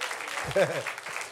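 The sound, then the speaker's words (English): An audience claps their hands at a preacher's call to say hallelujah and praise the Lord, a steady, dense wash of applause, with a voice briefly calling out over it partway through. “And let me stop for a moment, and you need to say hallelujah, praise the Lord, clap your hands so that I know you're still with me.”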